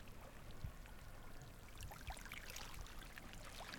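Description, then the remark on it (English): Gentle water laps and splashes steadily against a beach in Antarctica, a soft continuous wash with small trickling bursts and faint low knocks, fairly quiet, with no voices. “Water lapping up on the beach.”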